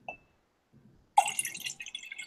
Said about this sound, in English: I really hope for the audio portion that you could hear me pour my second glass of wine. Could you hear it? I think we did, and just in case you didn't hear it, I'm going to do it again.